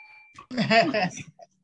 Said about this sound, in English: I'm ringing the bell for Rosie. Boom.